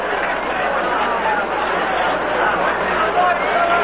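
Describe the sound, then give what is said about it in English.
A baseball stadium crowd reacts with a steady, dense roar of chatter and applause, applauding John Bateman's throw to first trying to pick off Bud Harrelson, holding an even loudness for about four seconds with no single voice standing out. “Bud Harrelson scooting back to first, and the crowd reacting and applauding John Bateman for trying to pick off Bud Harrelson.”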